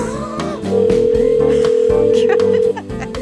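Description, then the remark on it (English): A telephone line rings on an outgoing call from the radio station Hot Country 103.5 to the reception desk of the Muir hotel: one steady electronic tone lasting about two seconds, loud, over faint voices and background sound. “Like, it just should answer your phone by now.”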